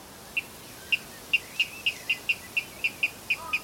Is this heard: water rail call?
yes